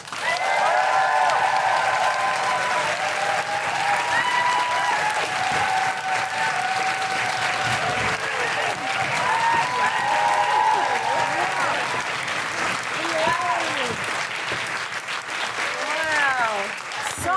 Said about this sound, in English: Put your hands together, make general woohooing and stamping noises for Andi, Osho!